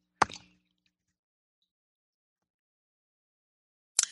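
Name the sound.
sipping hot tea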